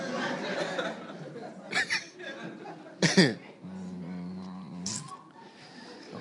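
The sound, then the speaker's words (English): One sudden, forceful sneeze bursts out, with a couple of softer breathy sounds around it and muffled voices murmuring underneath. “Bless you.”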